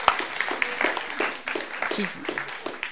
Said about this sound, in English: She's going to help us. Yay, give her a round of applause. Yeah.